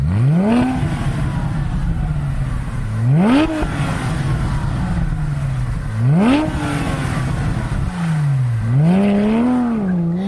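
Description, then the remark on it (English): A Porsche 911 sports car engine, from the German manufacturer, revs hard several times, each burst climbing sharply in pitch before dropping back to a throaty idle, loud with no voices. “This is the sound of an icon amongst luxury sports cars, the legendary Porsche 911.”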